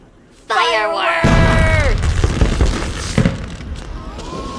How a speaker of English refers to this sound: Fireworks! Oh, that one is the bee's knees. Wow, did you see that?